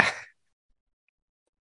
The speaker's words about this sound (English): You're going to make me cough up phlegm again.